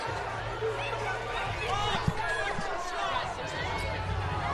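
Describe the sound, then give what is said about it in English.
An arena crowd boos and jeers steadily at a referee's blocking-foul call against a BYU player, a dense wash of many overlapping voices, with a single sharp thud cutting through about halfway. “And the crowd not liking the whistle here.”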